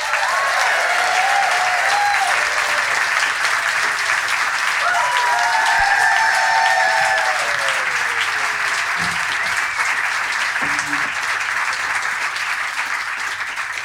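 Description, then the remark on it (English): Sustained applause from a large theatre audience welcoming the cast onto stage at the Wireless Theatre Company's live Halloween show at the Leicester Square Theatre: a dense, steady wash of clapping throughout with a few whoops and cheers rising above it. No one speaks over it. “So can we start, please, with a huge round of applause as we welcome our cast onto stage.”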